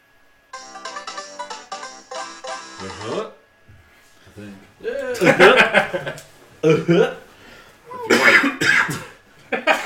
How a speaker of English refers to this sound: I'm right away coughing. Everybody get it out. Let's get it out.